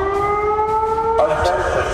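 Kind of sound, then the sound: signal or alarm, alarm siren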